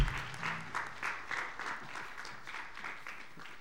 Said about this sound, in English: Let's give a round of applause to our guests, both here and at home.